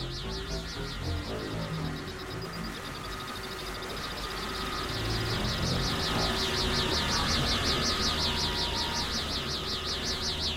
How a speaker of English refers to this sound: The electric sign flickers and buzzes, sending in light and color.